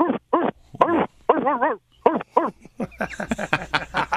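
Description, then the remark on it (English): A male caller on the show Dog Talk imitates a dog barking, a rapid series of loud, pitched woofs and yelps that rise and fall, growing more continuous and strained toward the end. “Are you ready to bark like a dog?”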